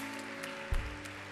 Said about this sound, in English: So why don't we thank every of these people? Yeah. Come on. Let's hand clap for these who serve our students every week.